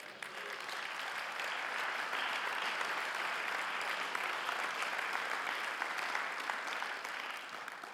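An audience claps steadily for about eight seconds, a dense, even wash of many hands at a constant loud level with no voices, fading only slightly at the end.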